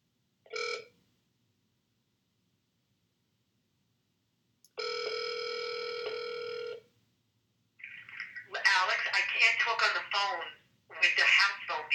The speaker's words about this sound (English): You're breaking up. I need to call you on the house phone. You're breaking up. The same thing is happening. What? Repeat? I don't hear you.